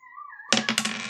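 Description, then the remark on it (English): A girl yells in the background for her sister, a high drawn-out call that swells into a louder, harsher shout about halfway through the brief moment. “If you hear that in the background, that's our daughter yelling for her sister, and also yodeling for her.”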